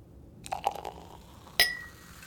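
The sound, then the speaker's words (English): Glasses of Veuve Clicquot champagne meet in a toast with a single bright clink that rings and slowly fades, preceded by a few soft taps and a faint liquid trickle. Clear, with no voices. “At this time of night, a glass of champagne will do nicely. Hear, hear.”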